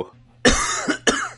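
Two harsh, forceful coughs close to the microphone, the first long and rasping, the second shorter, separated by a brief gap with a faint quiet breath before them.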